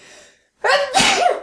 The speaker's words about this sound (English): I got to sneeze.